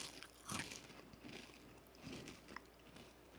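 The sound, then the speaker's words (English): Crisp crunching of Ruffles potato chips being chewed, with several sharp bursts spaced irregularly over a few seconds and quieter chewing between them, with no talking. “Wait for you to chew chips.”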